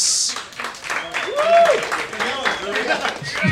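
An audience bursts into steady applause to pick a favorite act, with dense, continuous clapping mixed with shouts, whoops and a rising-and-falling whistle, holding loud for several seconds.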